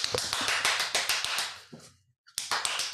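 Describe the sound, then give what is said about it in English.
A quick run of sharp hand claps, fairly loud and steady, demonstrating how Nancy Pelosi clapped, that tapers off into a brief silence before a few more claps resume. No one speaks. “She was like in her chair, and as soon as she clapped, like...”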